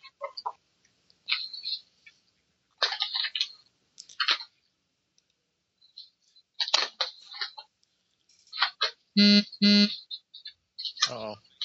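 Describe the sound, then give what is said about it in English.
A phone's text alert for an incoming text message plays a short, loud "womp womp" tone near the end, set among scattered clucking, chattering bursts and faint voices. “That was my phone making a womp womp, see?”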